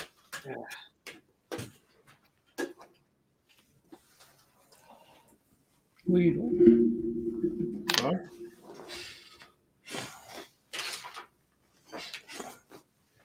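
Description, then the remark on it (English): A single sharp sneeze bursts out after a couple of seconds of low, droning whine, surrounded by scattered clicks and soft handling noises. “Bless you.”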